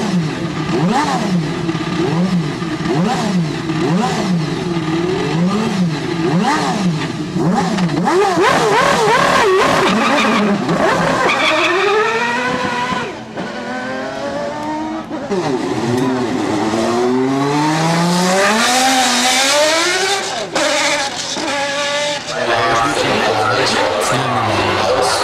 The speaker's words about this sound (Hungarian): Nem, nem, ez kérlek, a Ferrari 333 SP, ez az a lapos prototípus, tudod, igen, ott 93-tól gyártották a Michelin Otto tervé alapján, 4 literes V12,